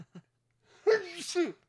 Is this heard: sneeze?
yes